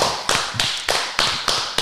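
Slow, steady hand claps, about seven sharp bright slaps at an even rhythm, with no voices, like a small group giving a brief round of applause.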